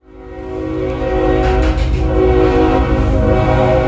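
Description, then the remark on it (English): A freight train running through Mexico blares its horn in a loud, sustained chord over the low rumble of the passing cars. The horn swells quickly at the start and then holds steady. “There's this train called La Bestia that runs from the south end of Mexico all the way to the north.”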